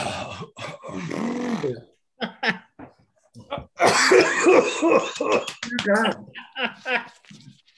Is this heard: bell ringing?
no